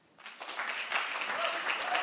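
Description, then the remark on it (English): A church audience breaks into applause after a brief moment of quiet, answering a question about who likes challenges: a dense, steady patter of many hands clapping that holds at an even, moderate level to the end. “All right, how many people, by way of applause, how many people like challenges?”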